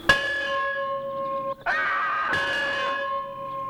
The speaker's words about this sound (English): But down below, Elmer arrives and walks inside the schoolhouse. Forlornly, he grabs the rope and he rings the bell in honor of Walt, which wakes Clint up and surprises him so that he screams.